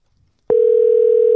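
After a brief silence, a loud, steady telephone dial tone starts as a phone call is placed and holds unbroken to the end, a single continuous hum with no voices over it.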